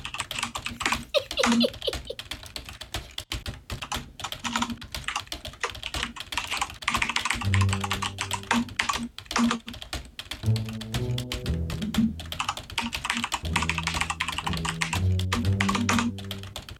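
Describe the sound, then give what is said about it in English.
Rapid, steady clicking of a computer keyboard being typed on while going to Steam, continuous, with a light melodic music track joining underneath about halfway through. “I have to put the typing music in here.”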